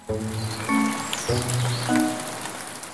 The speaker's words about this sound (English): Clouds are full of water. When they get really full, that water falls to the Earth as precipitation. You may know precipitation as rain or snow.